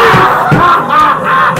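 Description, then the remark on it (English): A loud, sustained scream in a haunted house holds a strained, high-pitched tone for under two seconds, wavering slightly in pitch with no pauses. “There's a fucking scream!”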